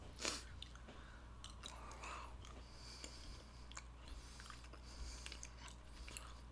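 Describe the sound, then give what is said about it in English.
Steady chewing of a coconut-flavored candy with soft, wet crunches and occasional sharper bites, repeating irregularly over a low background hum; no one speaks. “I got coconut. The thing is, I love coconut. It tastes fine.”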